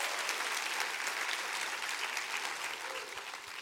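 An audience claps their hands at the preacher's call to clap and say there's power in the name of Jesus, a steady, dense burst of applause holding at an even loudness for a few seconds, with a faint murmur of voices underneath.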